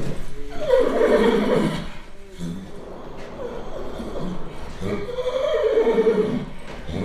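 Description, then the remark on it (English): A breeding stallion at stud neighs twice, loud, each whinny a drawn-out, quavering call, as a mating with a mare is about to happen; the two calls are separated by a few seconds of low background noise. “This equine master chef has only one signature dish, but he'll serve it 100 times or more each season.”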